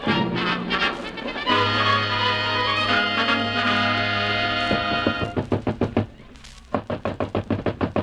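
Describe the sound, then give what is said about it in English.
A sustained musical chord fades out, then a series of loud, sharp knocks on a door follows in quick, insistent bursts, repeated several times near the end. “open the door.”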